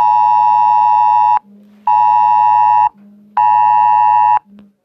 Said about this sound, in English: That's nothing. It was my cell phone telling me about a child abduction.